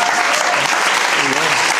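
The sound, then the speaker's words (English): A round of applause, dense steady clapping from many hands at a loud, even level for the whole couple of seconds, with a faint hint of voices underneath. “Yep, and it's the round of applause for all that shit.”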